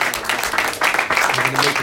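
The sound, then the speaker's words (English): A group breaks into a short burst of applause for a boy's haircut, steady dense clapping throughout with voices chattering and cheering underneath. “Give a round of applause for his haircut.”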